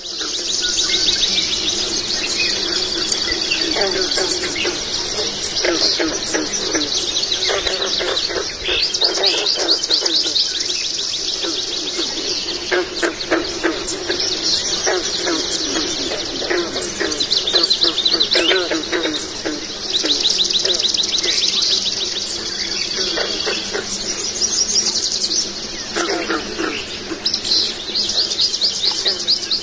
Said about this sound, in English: So what I'm about to play you is a little soundbite from the researchers who actually recorded a dawn chorus. And while you listen to it, listen to all the different birds chiming in together.